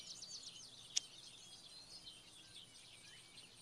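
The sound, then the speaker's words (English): Soft birds chatter continuously with wind blowing in a quiet outdoor ambience, with one brief sharp click near the start and no voices. “And after a moment of just blowing winds and chattering birds,”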